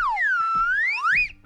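A slide whistle plays one continuous, bright tone that glides down, levels off, then swoops back up higher before cutting off, loud and alone with no talking.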